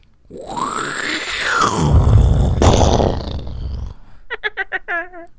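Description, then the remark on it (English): Voices imitate an incoming rocket from the video game Worms: a whistling tone rises and falls, a loud, rough mouth-made explosion follows, and a burst of choppy, rhythmic laughter ends it. “You do the incoming, I'll do the rocket noise, and then you can do the laugh.”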